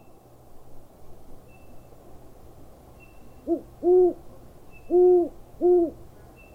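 Owls hoot at night, a short, soft call followed by three louder, drawn-out low hoots in an uneven rhythm, over a steady background of wind rushing in the trees.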